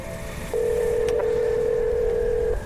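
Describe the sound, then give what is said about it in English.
A single steady telephone tone from a call made on a payphone sounds for about two seconds at an even pitch, clear, over a faint low background rumble, with no voices. “And the phone calls she makes to those she left behind as she climbs.”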